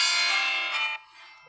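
A school bell rings loudly and steadily for about a second, then cuts off and leaves a fainter lingering ring, with no voices.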